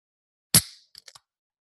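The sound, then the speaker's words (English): A drink container cracks open with a sharp, loud pop and a brief fizzing hiss that fades quickly, followed by three small, quick clicks. No voices are heard. “Hang on, I've got one to open too before you introduce. Let's see if I can get a better sound.”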